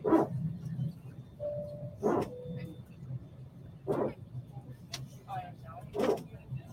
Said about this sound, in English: What is that noise? Is that a dog barking?